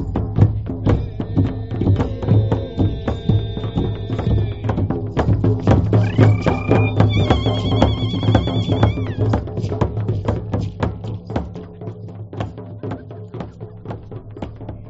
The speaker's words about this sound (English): As the ceremonies wound down and day turned to night, we drummed. And feeling unguarded, light, and energized, even I was on my feet. Listen, that's me chanting into the night.